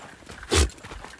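A goat sneezes: a single short, forceful snort bursts out, a breathy puff of air lasting about a tenth of a second amid faint background rustling; no one speaks.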